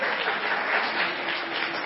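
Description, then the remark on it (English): A crowd claps and applauds steadily for the mothers, a dense, even wash of many hands with no pauses, holding a consistent loudness throughout with no voices standing out. “So let's give a round of applause for all our moms.”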